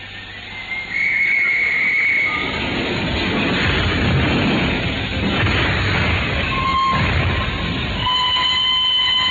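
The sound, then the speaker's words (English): A steam train pulls away from Paddington station, its loud, steady rumble and hiss filling the scene while shrill whistle tones sound over it. No one speaks. “The train sped out of Paddington.”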